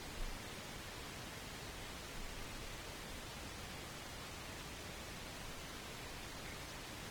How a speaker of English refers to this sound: And then we have, like, silence for a while, followed by some static and maybe, like, a scream. Well, yeah, here's a static. I love this ending so much.